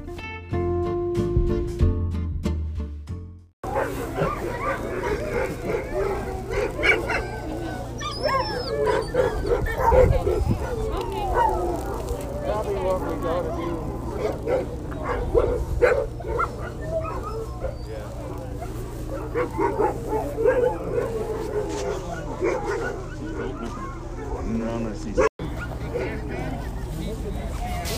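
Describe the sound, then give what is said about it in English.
Hundreds of sled dogs being checked over by veterinarians bark, yip and howl together in a continuous, overlapping chorus, with a steady low hum underneath after a brief opening burst. “Mostly what you'll hear is dog revelry, a bunch of dogs socializing, howling, and barking.”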